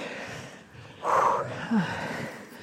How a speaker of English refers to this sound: It's a monument, of sorts, that's at the top of a very tall hill in Macclesfield, about 30 minutes east of Knutsford. And you know what very tall hills mean? More heavy breathing.